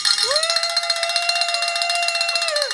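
A bell rings loudly and continuously for about three seconds, rung to mark the second founder, a rapid shimmering clatter of strikes over a steady ringing tone, with no voices.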